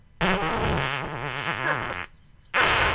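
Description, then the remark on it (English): A voice blows a long, wobbly raspberry imitating a fart, loud for nearly two seconds, then after a brief pause starts another buzzing burst. “He goes, oh, shit, I just farted. I was like, yep, I heard it.”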